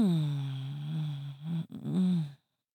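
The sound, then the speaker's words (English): A guest imitates sex moaning for a show's moan segment: a long, low, wavering moan that briefly breaks off, then a second shorter moan rising slightly in pitch before stopping abruptly. “That's where my guests give their best, like, sex noises, sex sounds.”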